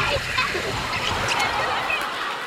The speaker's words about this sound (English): So, we come out of the water. He gets back in the boat.